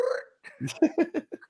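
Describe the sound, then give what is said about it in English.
A French bulldog snoring: a quick run of short, rhythmic snorting grunts, roughly six or seven bursts in a second and a half, starting with a higher wheezy tone, with no talking. “he might be hearing my Frenchie snoring.”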